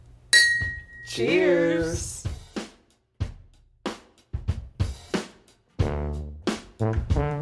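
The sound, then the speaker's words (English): Glasses clink together once in a toast near the start, a bright ring that hangs briefly before fading, followed by several people talking and exclaiming over the rest of the moment. “Cheers.”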